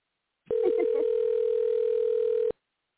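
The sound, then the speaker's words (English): A single steady telephone ringback tone while a phone call is being placed, one unbroken two-second beep at a fixed pitch that starts and stops abruptly, with a faint voice briefly audible at its start. “And it's not even ringing.”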